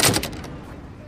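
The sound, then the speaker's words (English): A bar door swings open, held for a woman entering, and shuts with a quick burst of loud clattering thuds, then fades into a faint hum. “Now entering the bar”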